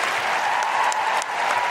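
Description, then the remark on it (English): Steady, dense applause from an audience at a live show, greeting performer Georgia Mooney: a continuous wash of many hands clapping at an even, fairly loud level with no voices standing out. “Can I have a huge, huge, huge round of applause for Georgia Mooney?”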